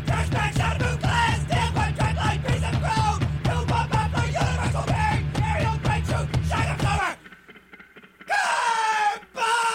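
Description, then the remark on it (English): A man screams hoarsely and loudly as lead vocals over a pounding, repetitive beat for several seconds in a song recording; the music cuts out, then one more raw, strained scream rings out alone. “He's screaming so loud and so hard that we could only do one take a day for each verse, you know?”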